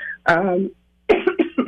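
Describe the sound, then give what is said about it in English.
A woman's hoarse coughing fit: one strained, drawn-out cough, a short pause, then a quick run of several rough coughs in a row. “I want her to be able to wrap up so she can go and cough her head off like she needs to.”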